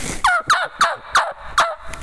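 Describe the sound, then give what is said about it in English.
Five slow, evenly spaced yelps of a young male turkey (jake), imitated on a mouth call a little slower and deeper in tone than a hen. Each note is raspy and drops in pitch, with no talking. “You can imitate that on a mouth call a little bit slower, a little bit deeper in tone, where a hen's, Jake's, and I apologize, my throat's so dry, and the calls are dry.”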